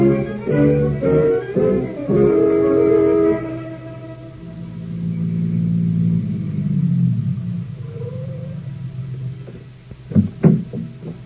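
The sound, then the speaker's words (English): A car engine revs up loudly, then settles into a steady low rumble as the car drives toward the waterfront, ending with a few sharp knocks or thumps. No one speaks. “You can sleep in the car on the way to the waterfront.”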